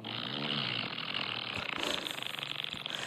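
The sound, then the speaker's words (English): A long, buzzy fart sound effect from a soundboard app plays loud for about three seconds, starting as a steady low rumble and breaking into a rapid sputtering flutter toward the end. “Who knew there were so many different farts?”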